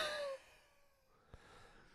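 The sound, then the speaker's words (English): A single short, deliberately faked cough bursts out at the very start while a button is being pressed, then cuts off into near silence broken only by a faint click; no one speaks. “Well, I'm just coughing and pressing the button at the same time.”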